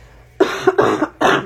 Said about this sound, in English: That is a nasty sounding cough. I swear it's just the end of a head cold.